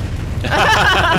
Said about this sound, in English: There's an explosion of fiery snakes.